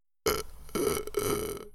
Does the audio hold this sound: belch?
yes